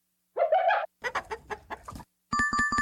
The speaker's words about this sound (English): Sound is chicken.